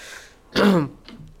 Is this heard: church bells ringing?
no